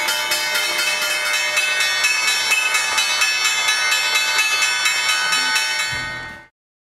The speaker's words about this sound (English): Here's the bell. All right, Dow's going to go out.